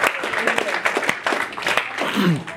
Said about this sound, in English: Come on, one clap. Let's clap. Come on.